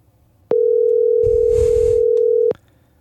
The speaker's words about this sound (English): You know what? I'm going to make a phone call right now. We'll replace him.